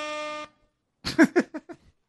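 A single short air horn blast, a flat buzzy tone lasting about half a second, then a brief pause before a voice speaks a few quick syllables.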